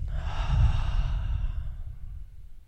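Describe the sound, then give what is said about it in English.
A deep breath taken in, released as a long, audible sighing exhale that gradually fades out, with no talking. “I think everybody should sit up and take a deep breath in and exhale.”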